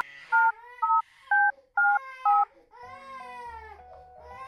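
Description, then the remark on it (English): Five evenly spaced touch-tone beeps from a phone keypad, each a short two-note tone, as the support number from the side of a Cuddle Pod is dialed, over a baby's steady wailing cry, which continues alone afterward with a low hum beneath. “Let's call support. The number should be on the side of the pod.”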